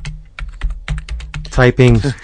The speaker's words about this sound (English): Typing with my elbows. With the size of his hands.